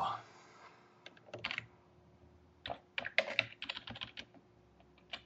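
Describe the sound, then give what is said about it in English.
Quick typing of an email to Peter Watt on a computer keyboard: short bursts of clattering keystrokes separated by brief pauses, with a faint murmur of a voice at the start. “Just typing a little email to Peter Watt.”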